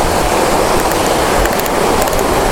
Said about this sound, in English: Oh, there's a little waterfall.